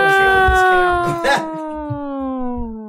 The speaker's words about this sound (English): Drew turned on the siren effect.